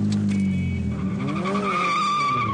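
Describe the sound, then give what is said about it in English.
A getaway car peels away at speed, tires squealing loudly as the engine revs and rises in pitch, with no voices. “Hey, what sort of getaway car is this?”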